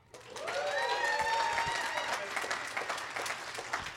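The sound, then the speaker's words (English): An audience, the Bridge family, breaks into loud, sustained applause during announcements to show how excited it is about upcoming events, dense clapping filling the whole stretch, with a few high cheers and whoops rising over it near the start. “By an applause-o-meter, how excited are we as the Bridge family that there's tons of cool stuff happening?”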